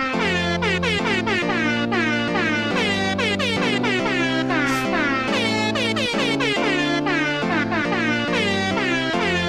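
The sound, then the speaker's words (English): A loud, continuous air horn blares for several seconds, its brassy tones stepping between pitches in quick bursts almost like a tune, with no speech. “We've got a sound the air horn, by the way.”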